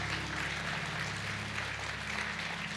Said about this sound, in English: Come on, let's give God a big round of applause today.